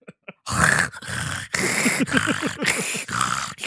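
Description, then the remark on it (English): Loud heavy breathing, with about five long rasping breaths in a steady rhythm, some carrying a low groaning tone, and two faint clicks just before it starts. A man is breathing in a room in the show Melrose Place. “That's him breathing in a room.”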